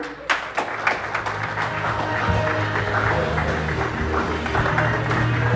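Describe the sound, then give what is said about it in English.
An audience at a stand-up comedy show breaks into applause for the next comedian, a few sharp claps at first swelling quickly into a steady, dense wash of clapping that holds for several seconds, with a low hum underneath and no speech. “Clap for whoever is next.”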